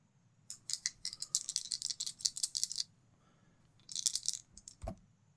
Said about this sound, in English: That sounds like a lot of dice.